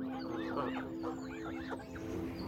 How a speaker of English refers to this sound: I'll let the ducks have a moment.